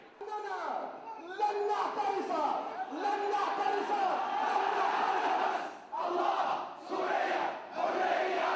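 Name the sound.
cheering crowd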